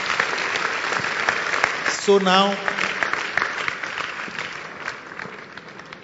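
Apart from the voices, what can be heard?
audience clapping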